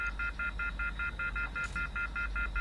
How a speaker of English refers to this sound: Is this like a dial or like a push button phone for the old school landline? Yes. Okay, I'm frantically pushing the buttons down to try to get a signal. You're just hearing that harsh disconnection tone.